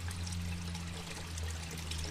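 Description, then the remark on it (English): Water circulating through an aquaponics filtration system pours and trickles steadily, a continuous splashing flow over a low mechanical hum, with no voices. “And then as you walk up this way, you can really hear the water circulating through now.”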